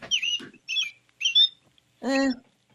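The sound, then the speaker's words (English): Rose-breasted grosbeak song, similar to a robin's but more warbly: three short, high, slurred phrases followed by a longer, harsher buzzy note, with brief pauses between them and no talking. “Yeah, it's just a little more warbly than a robin.”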